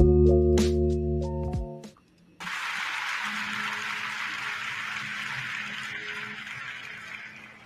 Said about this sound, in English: That intro, I never get tired of it. I love the applause.